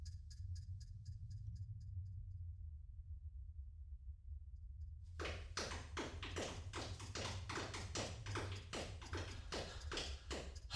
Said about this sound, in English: I know those footsteps were coming from this direction.